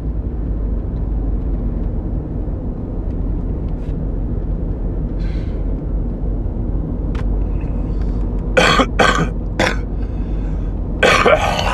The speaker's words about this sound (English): Excuse me. Getting over a little cough, man. Not sick in the name of Jesus.